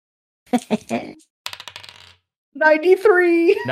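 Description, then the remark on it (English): Dice clatter and rattle across a hard surface in two quick bursts of sharp clicks, fairly loud, followed by a person speaking. “Oh, egg dice roll? Sure.”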